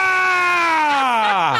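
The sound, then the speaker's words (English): A single loud, sustained vocal shout with a slowly falling pitch, made by one voice as a crowd sound effect, alone with no talking around it. “You got the murmurs. Now we need some shouts.”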